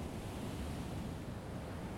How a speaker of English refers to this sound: He sat down next to Mr. Irving and took a few moments to gaze out at the rolling waves of the sea. He agreed with Mr. Reynolds that it was a lovely view.